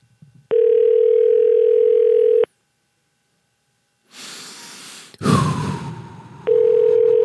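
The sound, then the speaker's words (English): A steady, mid-pitched ringback tone purrs for about two seconds, pauses, then sounds again, as on an outgoing phone call. Soft rustling and a loud breathy burst fill the gap between rings. “All right, we're calling him.”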